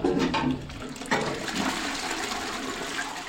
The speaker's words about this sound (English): I would probably turn the taps on. Yeah, and turn the hot water tap on, and these should be not too hot.